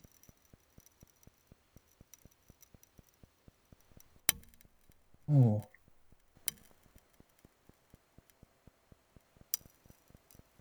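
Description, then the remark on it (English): Glass cracking underwater in the deep ocean: a few sharp, isolated snaps over a steady train of faint, rapid ticks, with a brief spoken exclamation in the middle. “Glass cracking. It's glass cracking. That's correct.”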